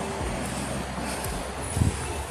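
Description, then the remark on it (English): A car's engine rumbles outside as a woman drives away in it, a steady low drone with a brief swell as it pulls away, with no one talking. “She's in that car. That's the lady that was talking really loud. All right, she's leaving, so I can go sit back down.”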